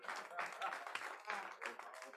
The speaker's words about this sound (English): Clap for Jesus.